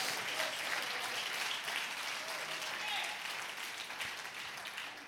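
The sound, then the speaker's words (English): An audience claps their hands together in a steady, dense wash of applause lasting the whole stretch, with indistinct voices murmuring beneath it. “Come on, clap your hands and say, God wants to bless my life.”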